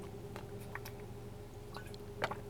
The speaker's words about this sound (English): Hashtag sip of water.